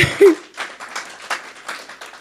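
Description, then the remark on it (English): An audience clapping as a speaker preaches: a scattered, uneven patter of handclaps at moderate volume, loosening and thinning out over a couple of seconds with no voices on top. “And just, yes, clap it up.”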